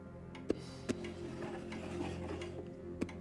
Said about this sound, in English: Must be one of them ticking clocks, eh?